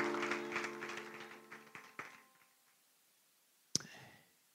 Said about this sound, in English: Let's give an applause to Jesus before we're seated, and then you may be seated.